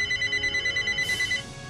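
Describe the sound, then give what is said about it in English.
A telephone rings with a rapid, warbling trill of evenly pulsed tones, steady, before the ringing cuts off near the end, leaving faint background hiss. “You know, why is it the phone rings when I record these episodes?”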